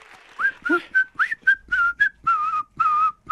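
A person whistles a lively tune up close, a quick series of bright, pitch-bending notes that start short and choppy, then settle into longer held tones near the end.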